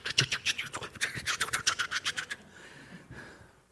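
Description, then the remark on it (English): A dog scratches itself in a quick, steady run of about fifteen raspy, thumping strokes lasting a couple of seconds, then the scratching stops and only faint rustling remains. “And then our dog comes in, starts scratching away.”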